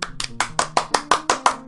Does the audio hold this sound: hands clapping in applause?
yes